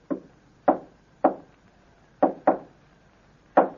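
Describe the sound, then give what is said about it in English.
Six solid knocks on a wooden living room door in a deliberate pattern, a signal that a fingerprint test on a glass succeeded: three evenly spaced raps, a quick double knock, then one final rap. Clear, with no voices. “After you have had glass tested for fingerprints, you will return to living room, knock on door this way.”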